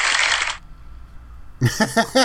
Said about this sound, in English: That sounded like a sewing machine, but that's cool. It was supposed to be a flaws.